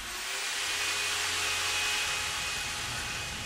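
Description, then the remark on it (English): A neighbour's power drill, used for DIY, runs in a steady, unbroken whine, a broad hissing whir that holds the same level throughout with no pauses and no voices. “He started to drill and hasn't stopped for 2 weeks.”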